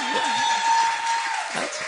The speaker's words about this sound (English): Do you guys want to clap for them?